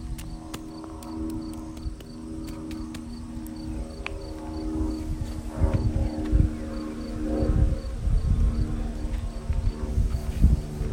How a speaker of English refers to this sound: Just got a little company here. A little airplane flying by.